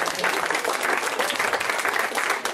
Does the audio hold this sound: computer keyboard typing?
no